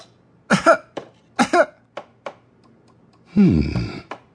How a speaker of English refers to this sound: Cough gently for me, Your Grace.